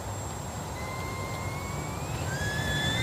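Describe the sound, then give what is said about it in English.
A boiling tea kettle with steam coming out whistles steadily over a low background rumble, its thin tones slowly climbing in pitch, with another shrill tone joining toward the end. “It's a tea kettle fart.”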